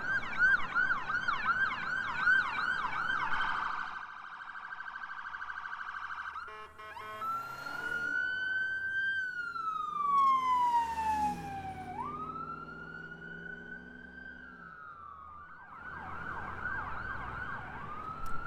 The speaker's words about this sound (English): Hang on, here comes a siren.